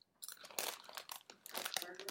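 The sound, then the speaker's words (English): Loud crunching of crispy Cool Ranch Barbecue Cheetos corn cheese snacks being chewed, a rapid series of sharp, brittle crackles in uneven bursts with brief pauses between bites. “I really appreciate that they're actually the crispy or the crunchy style.”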